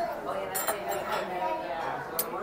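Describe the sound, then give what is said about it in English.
Metal silverware, including a magnetized knife, clinks a few times as it is handled, sharp light taps scattered over a couple of seconds, with indistinct voices murmuring in the background. “The silverware is magnetized here.”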